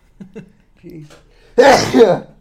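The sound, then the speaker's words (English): A few soft, halting voiced breaths build up before one sudden, loud sneeze from a nose full of mucus bursts out, noisy and harsh with a voiced, wavering tail lasting under a second. “I'm going to sneeze now.”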